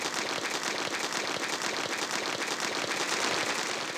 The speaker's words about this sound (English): Look at him go. See ya. The helicopter was really fast.